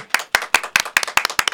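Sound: clapping applause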